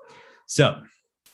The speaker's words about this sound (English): I get distracted by cats, and it makes it tough.